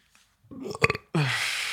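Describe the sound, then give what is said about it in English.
A short, low, gurgling burp lasting about half a second, followed by a steady breathy rush of noise. “Oh, little burp there.”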